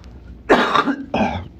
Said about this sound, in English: And I apologize about the coughing, but it's real life. I have allergies and this is what happens, but I'm not going to stress about it.